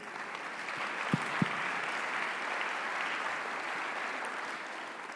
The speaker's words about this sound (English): So just another round of applause for that organization.